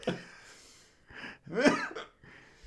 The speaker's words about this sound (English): That was like a cough up. It was a hiccup cough hiccup. Hiccough.